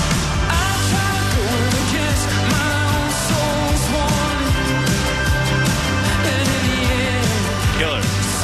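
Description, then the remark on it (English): A loud, dense new rock song from a band's upcoming album plays steadily, with driving drums, layered guitars and sustained synth-like tones filling the whole mix without a break. “This is a new song that they are doing. This is on their upcoming album”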